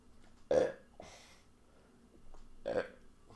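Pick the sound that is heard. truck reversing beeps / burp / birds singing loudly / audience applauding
burp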